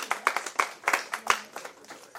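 A small crowd applauds, many hands clapping in a brisk, uneven patter with a few sharper claps standing out, steady throughout at moderate volume with no voices.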